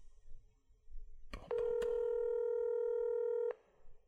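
A few sharp clicks of a phone being dialed, then a steady, buzzing ringing tone that holds for about two seconds before cutting off, clear and close with no one talking.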